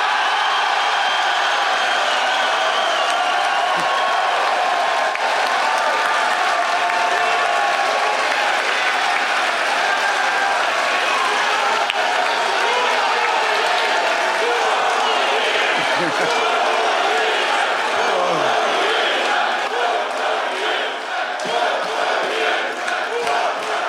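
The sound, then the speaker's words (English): A big arena crowd applauds loudly and steadily after it is announced that Brett Brown bought beers for the entire arena, a dense roar of clapping and cheering that holds strong for the whole stretch, with scattered shouts mixed in. “When that was announced, that might have gotten the biggest applause of the entire night when it was like, suddenly apparent to everyone that Brett Brown had bought the entire arena beers.”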